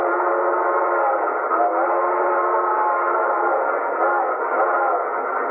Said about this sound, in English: the train blew for a water stop 3 miles ahead.